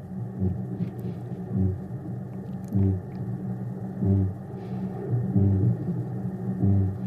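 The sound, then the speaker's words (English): A deep, hollow booming call repeats five or six times at a steady interval of about a second and a half, each boom low and resonant like blowing across a bottle, over a constant low hum. “It sounds just like a bottle top, blowing over a bottle top to me. Yeah, so there's a deep thudding going on there.”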